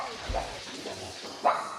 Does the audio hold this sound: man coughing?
no